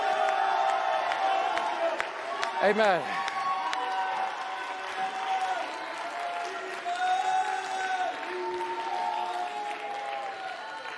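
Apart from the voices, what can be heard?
applause and cheering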